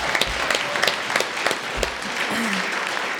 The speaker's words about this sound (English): So give yourselves all a massive round of applause for coming out. It's awesome to see you.